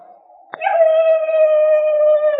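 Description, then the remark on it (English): A sharp click, then a long human cry rises into a steady, sustained wail lasting about two seconds. It holds an even, fairly high pitch and sounds loud and clear, with no talking. “It was a human cry, Junior.”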